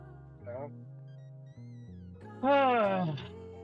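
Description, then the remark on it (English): A cat lets out a brief soft mew, then after a pause a louder, drawn-out meow that rises and falls, over a low steady background hum. “Come on, meow.”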